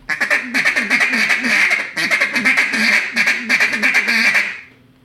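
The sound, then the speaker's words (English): A rapid, hard-driven feed call blown on a duck call, a fast continuous stream of clipped quacking notes running loud for about four and a half seconds before cutting off. “I can hit a hard feed on it. Really pushing a feed.”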